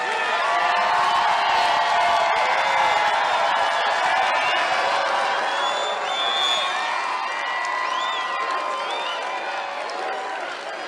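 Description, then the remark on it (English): A large rally crowd cheers loudly and continuously in response to a speaker's line about staging a comeback, with scattered whoops and shouts rising above a dense roar of voices and some clapping, sustained for the whole stretch. “Crowd definitely liked that one,”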